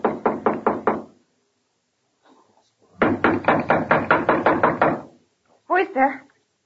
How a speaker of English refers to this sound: He disappeared into room 212. A few seconds later, I knocked on the door.